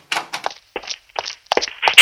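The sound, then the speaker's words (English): Bricks and debris from a collapsing chimney clatter down in a string of irregular thuds and knocks, building to a louder crash at the end, with no voices. “What's that noise? The chimney falling apart!”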